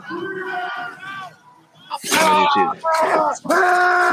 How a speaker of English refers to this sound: And your family screaming, oh my God, we're burning alive!